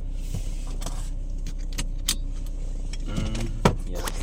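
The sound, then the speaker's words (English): Keys jangle in short, irregular metallic bursts, fairly clear, as someone searches for them, over a steady low rumble like an idling car. No one speaks. “And then now I can't find my keys.”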